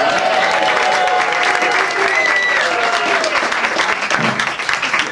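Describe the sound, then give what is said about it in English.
A live audience applauds steadily for several seconds, a dense wash of clapping with a few cheers and whistles rising above it, loud throughout. “A round of applause for the audience.”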